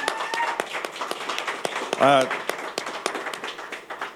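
A round of applause: a few people clapping in quick, uneven bursts for about four seconds, with a short vocal whoop breaking through midway.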